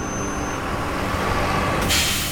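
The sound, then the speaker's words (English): A bus engine rumbles steadily at a station, then the air brakes let out a sharp, loud hiss near the end. No one speaks. “This bus is heading back to 2022, leaving in 2 minutes.”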